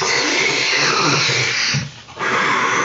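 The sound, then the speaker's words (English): A long, raspy burp forcing out a breathy rush of vape smoke after vaping, loud and rough, holding for nearly three seconds with a brief lull near the end before the exhale resumes. No one talks. “I had to burp out that vape.”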